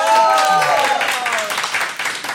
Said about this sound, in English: So I put it to you, audience, please applaud for the side that made the stronger case. Do you think cats, yes? Oh! You're monsters! That's one, two claps.